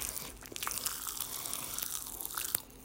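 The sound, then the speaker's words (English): Popping candy crackles while being eaten: a dense, steady fizz of tiny sharp pops and snaps with a few louder clicks. It is fairly quiet and continuous, with no talking. “Talk about an explosion in your mouth.”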